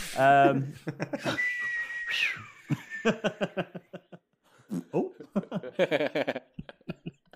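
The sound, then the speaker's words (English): A person makes a thin, sustained whistle of about two seconds with their voice, mimicking air whistling through an exposed butt crack, between bursts of chuckling and talking voices. “Air whistling through an exposed ass crack.”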